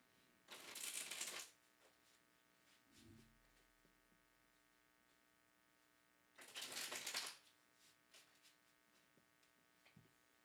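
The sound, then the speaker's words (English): Two bursts of tarot cards being shuffled, each a crisp riffling rush about a second long, separated by a quiet stretch with faint taps and a low hum underneath. “You can connect to the card by listening in for the sound of them being shuffled.”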